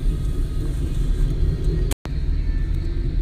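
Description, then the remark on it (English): A steady low rumble of a car engine idling in city traffic, continuous throughout with a brief dropout near the middle and no voices. “All right, so I'm stuck in traffic right now.”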